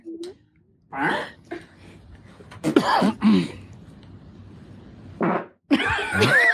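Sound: fart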